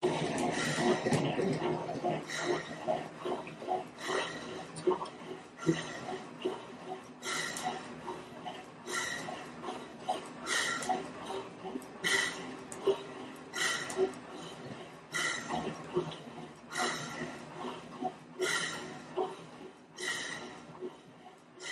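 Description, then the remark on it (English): Heavy, rapid breathing of a male test subject during an exercise test, with oxygen uptake over 3 liters per minute, repeats in a steady rhythm, about one breath every second or so, fairly loud, with no talking. “We're going to turn on audio so we can listen to the subject's breathing.”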